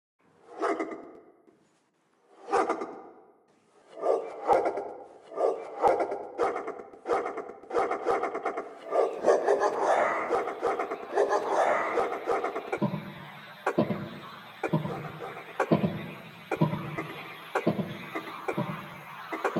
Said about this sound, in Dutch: Dat was een klein experiment in muziek concreet à la Schaeffer, gebaseerd op het eerder gehoorde geblaf.